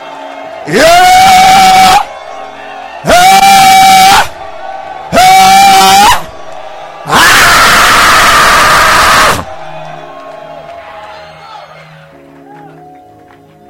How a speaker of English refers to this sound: I thought somebody shouting. I believe somebody is making a crazy noise. I thought somebody is vibrating the atmosphere.